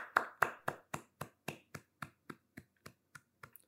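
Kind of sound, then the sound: crowd, people clapping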